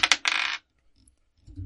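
A small hard die is tossed onto a tabletop: two quick sharp clicks, then a brief bright rattle as it tumbles and settles, close and fairly loud, followed by near silence.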